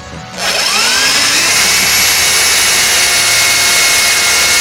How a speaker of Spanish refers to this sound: Quita el taladro un poco, que estoy hablando en la radio.